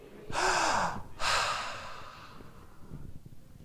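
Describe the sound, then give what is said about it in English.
A person coming up out of the water takes a loud, sharp gasp for air, then a second long, rushing breath right after it, with no talking, fading into quiet breathing noise. “What's the first thing they do when they come out of the water?”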